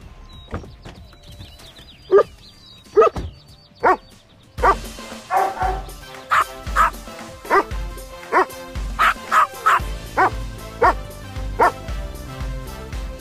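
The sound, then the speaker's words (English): Several dogs woof and bark in a steady string of sharp, loud barks, with a low music-like bed underneath, from a Buick That's Not a Buick TV commercial for the all-new Buick Enclave featuring a variety of dog actors. “a customized That's Not a Buick commercial featuring a variety of furry four-legged actors all woofing, with subtitles, of course, about the all-new Buick Enclave.”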